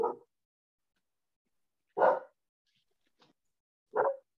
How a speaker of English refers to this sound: I'm giving my dog a treat to stop her from barking. It's all right. I got a dog too. Yeah. If I close the door, she'll bark even more.